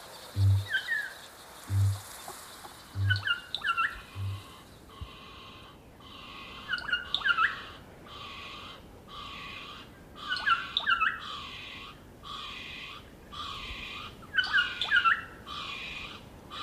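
Kākāpō (night parrot) calls: a few deep, booming low notes at first, then a long series of harsh, rasping squawks repeating in rhythmic bursts, with no talking.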